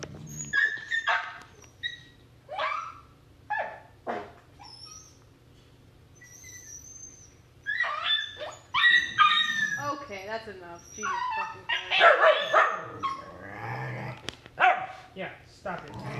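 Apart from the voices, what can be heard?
dog whimpering and barking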